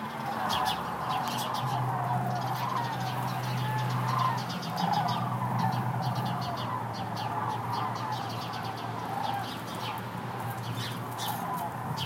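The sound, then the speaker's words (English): Garden birds chirp and twitter busily in the foreground while a flock of sandhill cranes flying over gives rolling, trumpeting calls in the background, over a steady low hum that persists throughout. “But in the background, there's this eerie kind of honking or trumpeting.”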